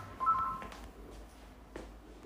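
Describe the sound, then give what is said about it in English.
A short, faint electronic telephone ring, a warbling tone trilling briefly and then cutting off, with no one speaking and only light room noise afterward. “The phone's ringing.”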